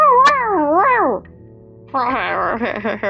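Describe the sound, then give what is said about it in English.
A cat named Nostan lets out a loud, wavering yowl of surprise as another cat leaps at him, pauses briefly, then gives a second, harsher drawn-out cry. “He yelled in surprise.”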